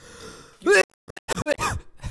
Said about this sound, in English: You really just coughed into the mic. Now I'm really not going to get close to that, man.